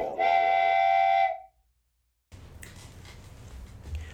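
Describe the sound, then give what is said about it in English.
A toy train whistle sound effect found online, used for the Train to Distractionville segment, gives one shrill, steady toot lasting about a second, loud. A brief silence follows, then a muffled, rumbling background noise. “It sounded like a 4-year-old's train whistle or something.”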